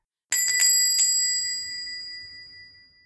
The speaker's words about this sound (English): A jaunty little bell jingled to announce them, and as the door swung shut, they were encased in relative quiet.